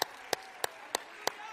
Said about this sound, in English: Look at me, devil, I'm clapping my hands. I'm going to rejoice in the God of my salvation.